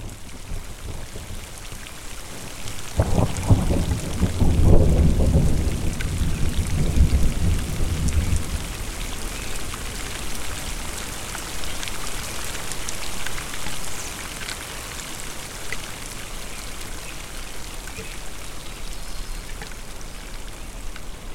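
Steady heavy rain hisses throughout a thunderstorm on ponderosa pine slopes, with a deep rolling rumble of thunder swelling up early on and fading after a few seconds, leaving the downpour alone. No voices.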